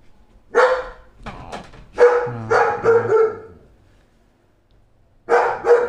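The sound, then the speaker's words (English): A female dog barks loudly in a string of sharp, irregular barks, falls quiet for a moment, then starts barking again at the end. “A couple of minutes of straight dog barking.”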